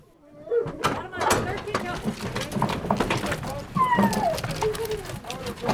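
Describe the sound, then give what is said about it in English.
Horses shuffle and clop about before a hunt, hooves knocking irregularly amid a busy outdoor scene, with people talking and calling indistinctly in the background. “And a few minutes later, they mounted their horses and the hunt was on.”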